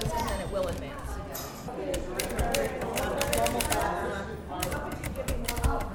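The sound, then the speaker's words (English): Rapid, irregular clacking of a manual typewriter in a bookstore, keys striking in quick bursts, over a steady murmur of background voices. “Here's Rita to explain a little bit about the manual typewriter.”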